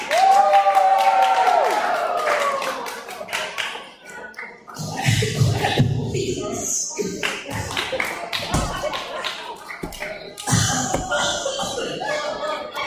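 A crowd claps in a steady, dense patter that carries on for several seconds, with a brief high cheer or whoop near the start and a few louder bursts along the way.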